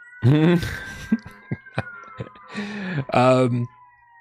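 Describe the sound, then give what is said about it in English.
Many sirens wail steadily outside, a faint, drawn-out tone gliding slowly downward, while a person speaks in short bursts over it and a few sharp clicks punctuate the pauses. “Wow, a lot of sirens.”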